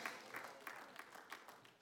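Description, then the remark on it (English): Sparse, scattered applause: a handful of people clapping unevenly, with irregular bright claps rising over a soft wash of crowd noise. The clapping stays thin and lacks a strong, sustained ovation. “Very mixed reviews with our spattering of applause.”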